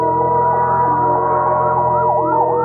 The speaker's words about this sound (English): A fire engine, suddenly screaming through the night, draws her swiftly from her bed to the open window.